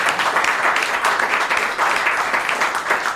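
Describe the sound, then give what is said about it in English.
A crowd applauds a folk musician's performance, many hands clapping in a dense, continuous patter that stays loud and even from start to finish, with no voices standing out. “So we give you a round of applause.”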